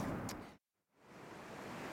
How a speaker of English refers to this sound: overlooking a rapid called Hell's Half Mile. The water moves fast, and she digs deep to find the meaning in scouting a rapid where a rock named Lucifer guards the entrance.